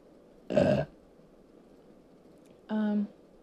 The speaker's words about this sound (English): I'm sorry, I'm gonna burp.